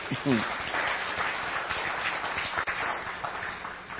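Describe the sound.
An audience claps together as a clap offering to the Lord Jesus, a dense, steady burst of applause lasting several seconds, with a brief voice calling out near the start.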